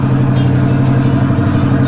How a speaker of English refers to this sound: And that's Vicky, a former cop car that's been converted to drag racing, even with a lifted chassis and more than 100 pounds of off-road tires in front.